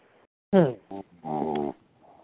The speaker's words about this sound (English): Uh-oh, that's rude. Please don't snore. Please don't mute yourself if you're snoring, please.